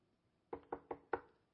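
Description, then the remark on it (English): Four quick knocks on a door by visiting Mormons, in an even, rapid rhythm, fairly loud, with near silence before and after. “Hey, there's some Mormons at the door.”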